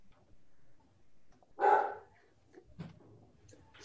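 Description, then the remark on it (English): A single loud dog bark rings out in the middle of an otherwise quiet stretch, followed by a fainter short sound and low background noise. “Always got to be a dog interrupting somewhere.”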